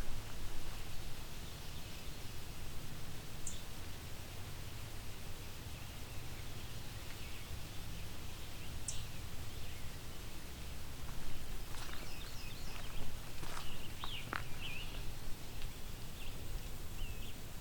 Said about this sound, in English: So I've got a ticking blue-wing warbler in front of me.